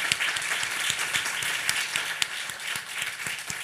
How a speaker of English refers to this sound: So give yourself a round of applause as well.